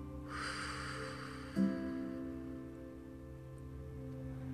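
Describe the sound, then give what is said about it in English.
During a breathing exercise, a soft, airy breath is drawn in slowly over about a second, held, then eased out more faintly, with a low, steady ambient drone humming underneath throughout. “Inhale. Hold. And exhale.”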